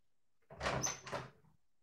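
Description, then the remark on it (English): A door being opened, a short burst of creaking and rattling with a thin high squeak in the middle, lasting under a second before quiet returns. No one speaks. “hey, open the door.”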